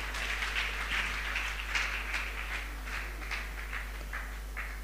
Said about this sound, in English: Give the Lord a much better clap offering.